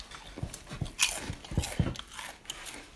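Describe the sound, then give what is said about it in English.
Crisp crunching of Doritos 3D Crunch Spicy Ranch corn chips being bitten and chewed, with a sharp bite near the start followed by several rhythmic, brittle crunches and no talking. “Doritos 3D Crunch Spicy Ranch.”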